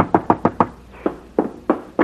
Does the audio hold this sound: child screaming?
no